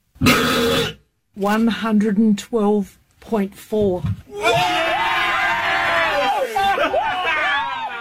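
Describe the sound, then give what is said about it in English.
A single extremely loud, rasping 112.4-decibel burp from a man in Australia in 2021, after he drank about ten Fosters beers in a row, lasts nearly a second, followed by excited voices and a crowd cheering and shouting. “112.4 decibel burp from a guy in Australia who had downed like 10 Fosters in a row.”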